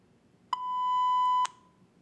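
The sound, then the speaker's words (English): A single sustained electronic beep from a trivia game buzzer, clean and steady, lasting about a second with a sharp onset and abrupt cutoff, alone against faint background hiss. “Buzzer's ready.”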